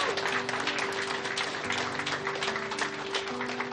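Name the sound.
audience clapping hands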